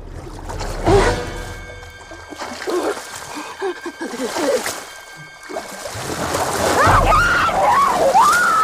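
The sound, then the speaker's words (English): Water splashes and churns in violent, irregular bursts, fairly loud, as a swimming woman is attacked, pulled under the water and whipped around, with a voice crying out amid the thrashing near the end. “Chrissy is then pulled under the water and whipped around.”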